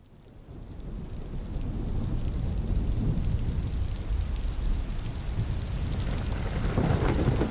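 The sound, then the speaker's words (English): Steady, heavy rainfall hisses across the whole stretch, with deep rolling thunder rumbling low underneath and swelling louder near the end. No voices, just the storm. “Oh my god, don't you just love the rain?”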